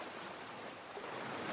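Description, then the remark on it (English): Water rushes and splashes steadily alongside a moving fishermen's boat at sea, where a group of dolphins is playing, leaping and splashing; a continuous wash of sea spray that swells slightly louder toward the end, with no voices. “He has spotted a group of dolphins playing alongside the boat, leaping and splashing.”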